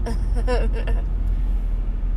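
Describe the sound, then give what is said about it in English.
A single drawn-out yawn from someone driving, a breathy voiced sound that rises and falls in pitch for about a second before trailing off over a steady low rumble. “And here I go yawning.”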